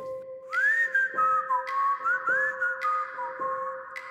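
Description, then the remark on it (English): In the middle of the night, a lone person whistles an old-timey song, the melody sliding and warbling between notes in a steady, unhurried flow over a faint constant hum, with no talking. “It was an old-timey whistle, like a”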